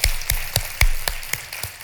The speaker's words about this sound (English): Let's give a round of applause to all of them.